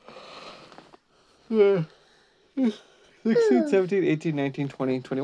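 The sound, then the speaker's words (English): A long breathy intake of air is followed by drawn-out, groaning vocal yawns from two people yawning at the same time, the sounds overlapping and trailing into stretched, wavering murmurs. “We both yawned at the same time.”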